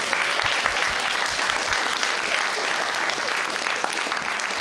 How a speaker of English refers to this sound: Well done, huge round of applause.